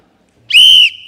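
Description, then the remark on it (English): A single loud, shrill whistle blast, blown to start a timer, steady and piercing for about half a second before trailing off, with no talking over it. “Your time starts when I blow this whistle.”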